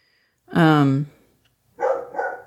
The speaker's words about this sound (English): Dog, you need to shut the fuck up.